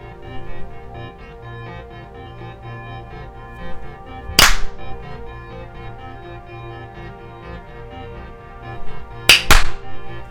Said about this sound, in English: Whoa, that second clap I just did broke.